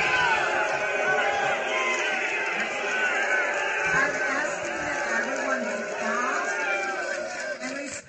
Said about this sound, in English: And you could just hear in the crowd hundreds of people shouting and screaming throughout this interchange between the LGBT homosexual crowd and the other Muslims. There's just at least, you know, 300-400 Muslims in this group.